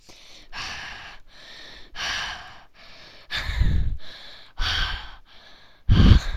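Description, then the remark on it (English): Heavy, rhythmic breathing right up against a microphone, with quick alternating breaths in and out and several louder exhales that blast the mic with a rumbling, windy thump. No one speaks. “Breathing feels so good.”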